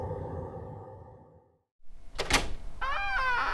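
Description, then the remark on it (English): A low hum fades to silence, then a sharp metallic clack as a cheap door lock is picked and gives way, followed by a door creaking open with drawn-out, wavering squeals, with no voices. “That cheap lock on your door was easy enough to pick.”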